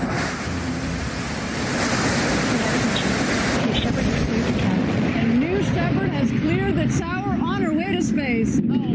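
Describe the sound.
A loud, continuous rocket-engine roar from a New Shepard rocket at engine start and liftoff rumbles steadily throughout, dense and unbroken like surging surf; faint voices and wavering whistle-like tones rise over it toward the end.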